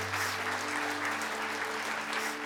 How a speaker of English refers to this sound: Church, can we clap for the three people who decided to give their life to Jesus today?